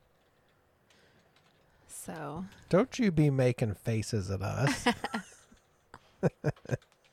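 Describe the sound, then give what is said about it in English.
Loud keyboard typing as someone looks something up: a burst of sharp, closely spaced clacks rings out after a short spoken remark, with fainter key taps behind the talk. “Gosh, that's some loud typing Jesus.”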